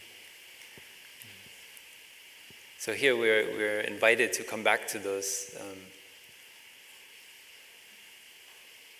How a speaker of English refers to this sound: that joy that we all experience as a child, hearing the crickets on a summer evening.